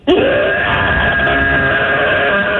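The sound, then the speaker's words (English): A 5-year-old child from Roswell, calling in to radio station B98.5, lets out one long, loud, sustained roar imitating a dinosaur, a raspy scream that starts with a rising pitch and holds strong for over two seconds without pause. “Let's hear your dino roar.”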